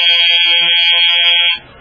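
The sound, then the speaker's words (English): A loud, steady electric classroom buzzer blares continuously for about a second and a half, a harsh, even tone that cuts off abruptly into near silence. “The three of us waited until the buzzer sounded.”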